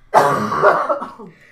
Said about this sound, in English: I'm not. This time. I coughed over here.